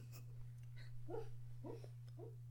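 animal, dog making noises

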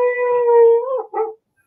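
animal, dogs howling and barking

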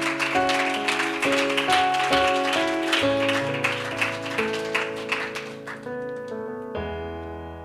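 crowd, audience clapping hands

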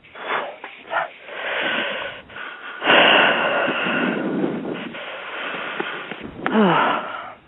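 human body sound, labored wheezing breathing

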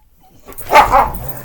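animal, dog barking

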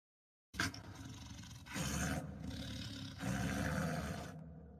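animal, wolf growling

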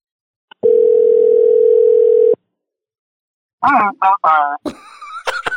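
signal or alarm, phone dial tone

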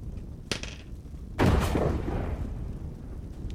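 sound effect, gunshot sound effect

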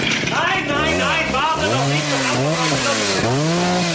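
tool, chainsaw running

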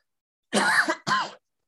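human body sound, cough

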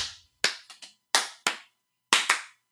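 human body sound, slow clap

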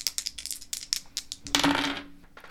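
impact, dice being rolled

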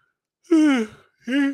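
human body sound, yawn

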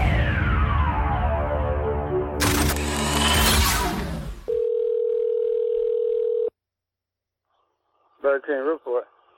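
signal or alarm, telephone line ringing

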